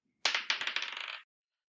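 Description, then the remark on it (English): Dice from a bag are rolled for a creature's intelligence saving throw, clattering and tumbling across a hard surface in a quick burst of bright clicks that bounce faster and faster before settling within about a second, fairly loud with no voices. “I'm going to go ahead and roll our critter in question. Reach for my bag of dice here.”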